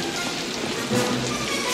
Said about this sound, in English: Oh, hey, it's raining out here. I'm getting wet.